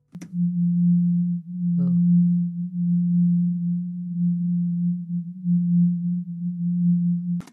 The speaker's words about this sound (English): Remember, Yvonne does say that the hum feels like a pulse. And that's what the dashes represent too. Not a continuous sound, but something going in and out.